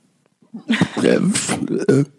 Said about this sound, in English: That was great. That was a great burp. First of all, I held it in for a longer time just to let it grow and build. Yeah.